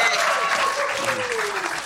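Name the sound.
round of applause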